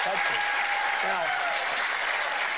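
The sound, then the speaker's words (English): A town hall audience applauding steadily, dense clapping that stays loud and even throughout, with a faint voice or tone briefly audible beneath the applause. “And the crowd loves it.”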